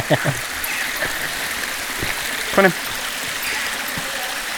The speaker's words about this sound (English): So yeah, take your time. Yeah, you'll hear lots of grunting and waterfall noises at this point.